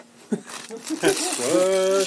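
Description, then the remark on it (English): A plastic bag of Swedish Fish candy crinkles and rustles steadily alongside the crunching of the candy being eaten, mixed in with a voice that rises into a sustained, humming vocal tone near the end. “You hear the crunching on the background.”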